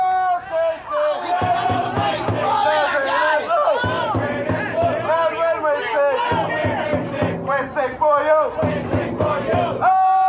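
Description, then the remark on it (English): A crowd of soccer supporters from a rowdy fan club in Oklahoma City chants loudly in unison, voices rising and falling in rhythmic, sustained bursts with shouts and cheers mixed in, continuous throughout. “Meet the rowdiest fan club in all of Oklahoma soccer”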